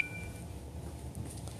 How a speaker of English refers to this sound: Well, that's two phone calls during this